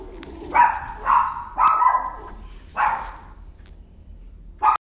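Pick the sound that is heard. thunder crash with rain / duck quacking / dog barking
dog barking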